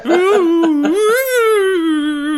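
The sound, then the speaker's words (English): A phone ringtone made from a person's whimpering voice: one loud, continuous, wavering whine that rises and falls in pitch for a couple of seconds, with no other talking. “No, but I did take this opportunity to make that your ringtone.”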